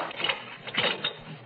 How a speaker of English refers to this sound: I phoned for a taxi, gathered up my wrap and handbag, and cautiously opened the door.